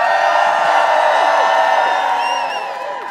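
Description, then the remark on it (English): A crowd at the May Day march in St. John's, which went from City Hall down Water Street to Harborside Park, cheers and whoops steadily, many voices blending into a loud, continuous roar with scattered high-pitched yells rising above it, easing slightly toward the end. “Well, let's hear some sounds from the May Day March.”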